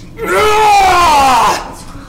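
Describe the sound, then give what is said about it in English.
A single loud, drawn-out male scream echoing across a cavern, lasting over a second, wavering and slowly sliding down in pitch before trailing off into a faint fading tail. “You get about 300 feet out before you hear a loud, echoing scream across the cavern.”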